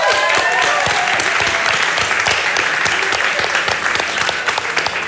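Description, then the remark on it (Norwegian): A large audience welcoming actress Alexandra Gjerpen claps loudly and steadily, a dense wash of applause filling the whole stretch with a few whoops rising above it. “Gi en stor applaus til Alexandra!”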